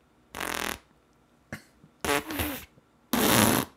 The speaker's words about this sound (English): it was a soundboard, and it was a fart app. So we'd be sitting in a van, and all of a sudden, you hear...